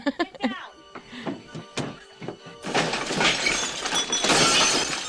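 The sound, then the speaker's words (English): Breakaway glass shatters loudly, a bright crashing spray that rings on for about two seconds, after a few brief vocal sounds and soft thumps at the start. “More of that super cool breakaway glass.”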